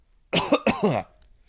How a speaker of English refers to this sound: Second form of cough, noun from the 14th century. 1. A condition marked by repeated or frequent coughing. 2. An act or sound of coughing.